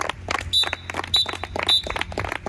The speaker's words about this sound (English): But that whistle means they've only got 3 minutes to turn around and get back out again.